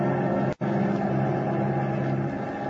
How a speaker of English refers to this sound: As our play continues, the giant bomber with its crew of four men is roaring eastward through the night.